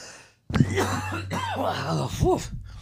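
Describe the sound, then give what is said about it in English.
A loud coughing fit, a run of rough coughs and throat-clearing sounds with several harsh bursts strung together over a low steady hum, with a brief gasping catch near the end. “Because I kept having these coughing fits.”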